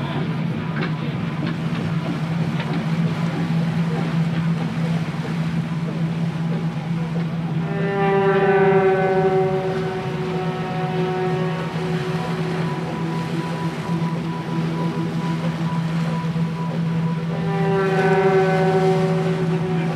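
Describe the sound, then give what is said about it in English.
A low, steady ship engine drones throughout while a deep ship horn blasts twice, long and loud, with faint sea wash and no voices, as the ship heads out to sea on February 16th, 1918, bound for Baltimore with a stop in Barbados. “on February 16th, 1918, the ship headed out to sea, destined for Baltimore, with a stop in Barbados.”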